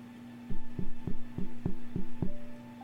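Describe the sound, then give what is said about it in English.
About seven dull, low knocks on a wall in a quick, even series, thudding steadily for roughly two seconds over a faint constant hum, with no talking. “And I knock on the wall.”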